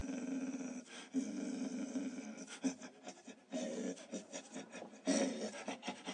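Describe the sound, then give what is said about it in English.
A dog pants in rapid, raspy bursts, a steady run of breathy in-and-out huffs with no voices, the rhythm briefly pausing before picking up again; a sound effect. “Panting of the dog that I found like is way too quiet, but I can't get it any louder.”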